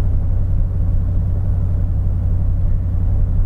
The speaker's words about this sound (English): You know, I'd say it feels appropriate to have the truck up around 3,000 RPM accelerating.